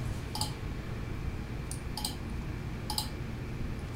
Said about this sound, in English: Roll the dice.